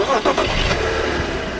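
A car engine starts up: a few quick cranking pulses, then it catches into a steady, loud rumble that holds to the end, with no talking.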